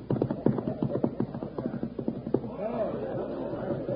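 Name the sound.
horse hooves clip-clopping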